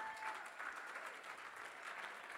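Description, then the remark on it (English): A church audience claps their hands while thanking God for Jesus, steady, dense applause that fills the whole stretch without pause, many overlapping claps blending into a broad wash of sound. “Come on, you can clap your hands if you like.”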